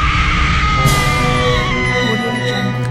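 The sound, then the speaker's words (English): A woman screams loudly and continuously for about three seconds, a shrill, sustained, harsh cry over a dense, noisy background. “And now it's time for Women Screaming.”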